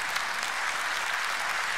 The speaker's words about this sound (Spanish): Amén. Eso vale la pena aplaudir.